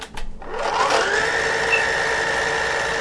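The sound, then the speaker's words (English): A Shark vacuum cleaner motor switches on, its whine climbing quickly in pitch before settling into a steady, loud hum with a high tonal edge, no voices over it. “Here's how the Shark sounds.”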